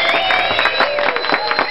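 A crowd applauds with steady, dense clapping that fills the whole moment, mixed with a few high-pitched cheers or whistles rising above the noise.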